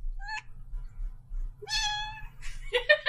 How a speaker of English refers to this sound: Sorry about that. She's trying to talk. Okay, hold on. Our cat has something to say.